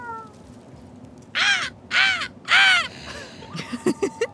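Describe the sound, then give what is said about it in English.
Three loud, harsh crow caws ring out in quick succession, clear, followed by a few fainter, choppy sounds as the calls trail off. “go up to the crows. They can help you.”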